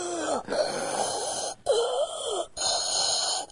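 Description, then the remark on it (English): Heavy, wheezy breathing close to the microphone, several long raspy breaths with a whistling tone, separated by short pauses, with no talking. “And the heavy breathing, of course.”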